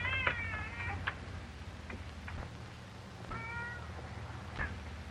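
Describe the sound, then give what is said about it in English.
Many cats, said to number 1,000, meow in overlapping, drawn-out cries, with a burst at the start and another midway, over a low, steady background rumble. No one speaks. “Yeah, I got 1,000 cats, too. Want to see them?”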